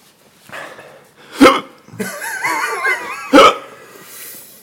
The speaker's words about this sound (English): Why do I have the hiccup?